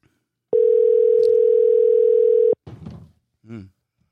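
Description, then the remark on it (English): A single steady ringback tone on a phone line as a call is placed to a man's personal number, one unbroken two-second burst, clear and prominent, followed by a couple of short, muffled vocal sounds. “Answer the phone, dude.”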